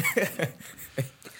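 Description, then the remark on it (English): A few short coughs in quick succession, followed by a brief throat-clearing burst, fairly soft and with no talking around them. “Cough, cough, clear of throat.”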